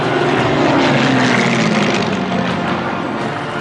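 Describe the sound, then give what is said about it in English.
A loud, steady droning roar of several propeller planes flying overhead in huge formations above Paris on VE Day, their engine tones overlapping and easing off slightly at the end, with no voices. “Everyone is out on the streets, planes zooming overhead in huge formations.”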